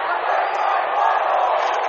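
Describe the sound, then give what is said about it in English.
Both crowds of fans at a hockey game roar and shout in a steady, dense wall of voices, loud and unbroken for the whole stretch, with no single voice standing out. “And now, both crowds are into it.”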